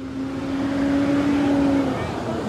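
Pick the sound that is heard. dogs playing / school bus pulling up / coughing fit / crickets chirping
school bus pulling up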